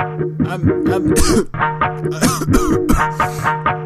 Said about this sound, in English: Dude, stop fucking coughing.